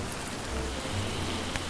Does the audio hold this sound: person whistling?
no